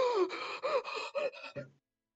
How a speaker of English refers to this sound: Gasp.